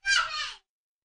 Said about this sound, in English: If you heard that yelling, that's my youngest.